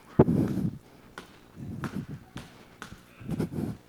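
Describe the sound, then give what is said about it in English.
Heavy stomping footsteps of a person stomping around in a church thud on a hollow wooden stage floor, several booming impacts in an uneven rhythm with short pauses between, fairly loud with a resonant low rumble. “I think she knows when I stomp around like that I'm not acting right.”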